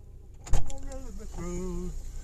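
A solid thump like a car door closing as a man gets into the car, followed at once by his voice singing a wavering, wordless tune inside a quiet vehicle, before a drive to Princeton, West Virginia.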